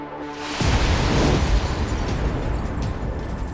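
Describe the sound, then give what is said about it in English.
A sudden, powerful bomb blast, a pile of explosives under the podium at Kingdom Hall in Sydney detonating during a service in July 1985, erupts after a brief quiet moment, a deep booming roar spreading across the whole range and rumbling on with crackling debris for several seconds. “A pile of explosives under the podium detonates, sending him through the roof before plunging back down to the floor.”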